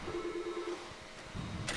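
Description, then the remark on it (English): A telephone rings once with a steady electronic tone lasting under a second, then gives way to quiet background noise and a brief rustling burst near the end. No one speaks. “Phone's ringing.”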